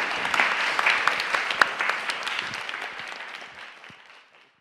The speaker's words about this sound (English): Round of applause. Amen.